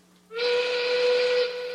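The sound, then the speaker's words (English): A single loud, sustained locomotive train whistle blasts steadily for over a second, a bright steady tone with rich harmonics, with no talking. “It's a train whistle.”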